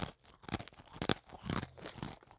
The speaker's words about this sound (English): Crunchy motherfucking cookie. Oh, they're dry. Are they not good? They're great. Oh, they're great. They're just dry. It's crunchy.